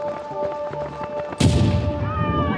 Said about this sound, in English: Then at around 2:49 p.m., as hundreds of spectators huddled around the finish line in anticipation of other runners' arrivals, an explosion occurred nearby.